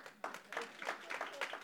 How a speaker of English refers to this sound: One class, we all clap. Come on.